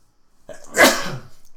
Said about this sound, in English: I feel like I have to sneeze.